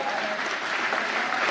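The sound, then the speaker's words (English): Steady, dense partisan applause from a crowd at an election event where Andrew Scheer is speaking in Windsor, a continuous wash of clapping at an even moderate level with no pauses, filling the whole moment without any voices standing out. “Partisan applause in the background.”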